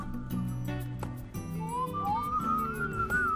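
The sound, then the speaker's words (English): A clear, sliding whistled melody rises over a full musical backing with a steady beat, entering partway through and carrying a tune to the end. “there's certain songs you share with friends and you're just like, oh, here's the whistle.”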